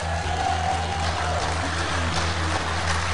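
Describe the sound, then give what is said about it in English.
An audience applauding live at a church on the west side of Columbus, just off 70 West: dense, steady clapping that blurs into a continuous crackling wash for about three seconds, with a low electrical hum underneath and no voices. “I hope you can hear their applause because we have a great church.”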